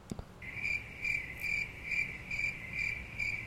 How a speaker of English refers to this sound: I don't want to hear no crickets.